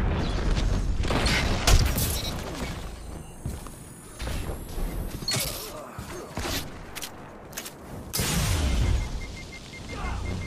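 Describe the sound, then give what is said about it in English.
Video game grenade explosions: two loud, rumbling booms, one early and one near the end, set among a dense, busy wash of game sound effects and mechanical clatter. “Isn't that a double grenade or something?”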